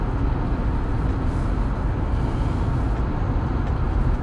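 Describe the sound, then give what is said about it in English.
A steady, dense rumble of road traffic with cars streaming east from Norfolk towards Virginia Beach, the low roar holding at an even loudness throughout with no distinct individual pass-bys and no voices. “Cars are headed east towards Virginia Beach.”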